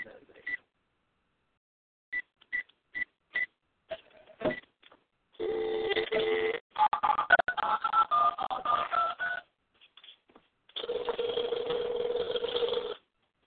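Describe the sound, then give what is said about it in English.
A quick sequence of short touch-tone dialing beeps, followed by longer, harsh warbling tone bursts from the phone line, clear with no talking. “Phone's going out.”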